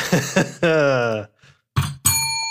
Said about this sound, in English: I just like went to hit my bell and missed. I just like hit the side of it.